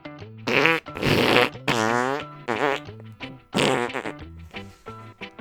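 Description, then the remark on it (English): A run of loud fart noises, several buzzy, sputtering blasts in quick succession, some rising and falling in pitch, with brief gaps between them and no talking. “I bet SoundCloud is going to reject a future show title, Josh Allen Fart Noises, because we've already used it!”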